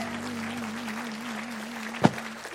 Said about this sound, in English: Come on. Come on. Don't stop clapping, everybody. Come on.